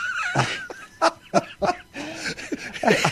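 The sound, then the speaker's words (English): A person's voice imitates a dog yelping in pain after its tail is chopped off, a rapid string of short, high, strained cries, several sharp bursts tumbling together over a few seconds. “and he closed the door and chopped off the dog's tail. Oh, yeah, he did. And then the dog went...”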